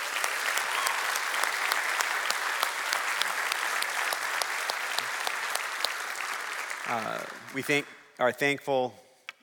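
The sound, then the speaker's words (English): Sustained applause from a crowd on Memorial Day weekend, honoring those who gave their lives in defense of the nation, a steady wash of many hands clapping for about seven seconds before fading, then a man begins speaking over the last of it. “We can clap for that.”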